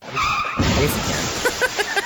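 A car crash sound effect: a short, loud tire skid squeals, then a heavy impact bursts in, followed by a few quick rattling clanks of debris settling.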